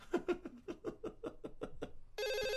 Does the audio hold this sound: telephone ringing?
yes